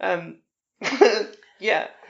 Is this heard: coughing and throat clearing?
yes